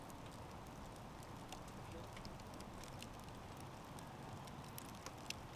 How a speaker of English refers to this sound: Sitting in my backyard, it's early April. I'm in North Austin. The cold April night, or cold by Austin standards. Cold enough to have a campfire. So I decided to come out. Have a fire tonight.